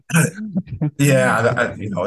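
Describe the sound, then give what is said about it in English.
A loud cough with throat clearing: a few short rough bursts, then a longer raspy, voiced hacking sound that trails on for about a second. “I just want to tell you, I guess I need to hurry up that cough.”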